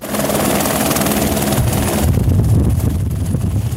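A rescue helicopter flies at Eagle Bluffs in West Vancouver, called in to help get two women hikers out, its rotor chopping in a steady low pulse beneath a loud, continuous engine roar, with some wind buffeting the microphone.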